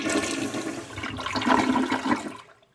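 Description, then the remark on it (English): A toilet flushes with a loud, rushing surge of water that swells, gurgles and then cuts off abruptly, with no talking. “But also water.”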